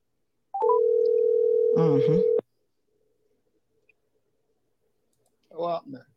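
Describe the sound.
A phone line rings out once with a steady, buzzy ringback tone lasting a couple of seconds during an outgoing phone call, a voice briefly talking over its end, then silence before a short burst of speech.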